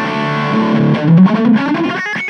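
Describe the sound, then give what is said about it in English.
A heavily overdriven electric guitar, a Telecaster played through a small battery-powered amp with a three-channel analog preamp, plays a short, sustained melodic phrase with thick, fuzzy saturation, fairly loud, ending with a few quick choppy notes. “And it's got this killer three-channel analog preamp. It goes from clean to dirty to full saturation.”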